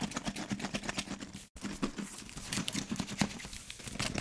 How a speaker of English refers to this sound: We're shaking the box, right?